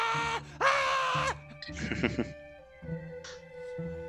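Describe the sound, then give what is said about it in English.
Several drawn-out, harsh screams and groans of a creature called a holder echo one after another, with a rough, rumbling burst in the middle, reverberant against a faint, steady background. “The screams of a holder echo in the background.”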